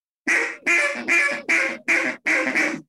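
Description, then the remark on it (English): A Real Tree duck call blown in a steady series of six raspy, drawn-out quacks, loud, each evenly spaced with brief gaps, with no voices. “This is the real tree call, which they have on their website right now.”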